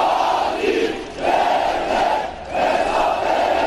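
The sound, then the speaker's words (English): A large crowd of thousands in Ankara, Turkey, mourning and protesting after twin bomb explosions at a peace march, chants loudly in unison, a dense roar of many voices rising and falling in a steady rhythm, with short dips between repeated phrases. “They've gathered in their thousands here in Ankara in mourning and in protest at a government which they hold responsible for this country's worst ever attack.”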